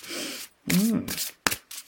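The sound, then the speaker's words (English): Crisp riffling and rustling of a deck of oracle cards being shuffled in a few quick bursts, with a short sharp flick near the end. “So we'll give the shuffle.”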